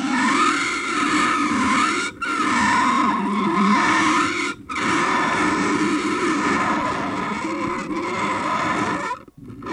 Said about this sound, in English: More likely the monster baby Chris and I made by slowing the sound of a crying baby down and distorting it over the sound of frogs chirping in the night.